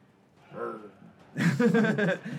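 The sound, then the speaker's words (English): A person imitates an animal growl, a low rough voiced rumble starting softly then swelling loud and gravelly for about a second, with no words spoken. “A lot of growling done today. Oh, I'm good at it, guys.”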